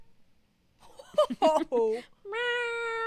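A cat meows several times, a few short, clipped calls followed by one long, drawn-out, insistent meow that rings on at the end.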